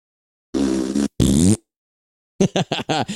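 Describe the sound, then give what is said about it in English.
People blow raspberries with their lips to imitate a rocket ship blasting off: two long, loud buzzing sputters, then a quick run of five short, choppy bursts after a brief pause. “and then we're going to go vertical, and we blast off like a rocket ship and go up as we make a raspberry noise.”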